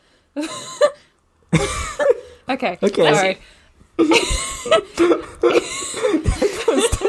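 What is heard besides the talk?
sneeze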